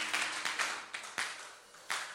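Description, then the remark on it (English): A crowd claps together as a clap offering, a dense, steady patter of hands with a few sharper claps standing out, with no voices over it. “Well, with a clap offering, why don't you take your seats?”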